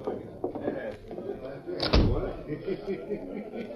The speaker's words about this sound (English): Here we are. Go on in. This looks like an office. It is an office. It's Jack Hammer's office. Step inside, I'll shut the door.